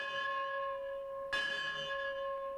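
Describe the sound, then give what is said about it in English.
A bell rings in the belfry of the Clark County School with a long, humming resonance, then is struck again partway through, the fresh clang swelling and slowly fading. No voices. “What better way to start an episode entitled The Belfry than with a shot of The Belfry, with the bell ringing?”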